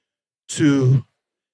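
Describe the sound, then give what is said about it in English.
A single short, slow exhale during a guided breathing exercise, after breathing in through the nose and holding, with an audible voiced sigh, breathy at the start and then humming, fairly loud for about half a second with silence around it. “Slowly exhale.”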